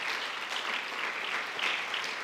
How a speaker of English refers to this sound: Hey, let's give a round of applause to these young people for what they did today.